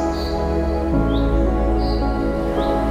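A few short, high bird chirps of birds singing at sunset recur every second or so, fairly faint, over a loud, steady bed of low sustained music.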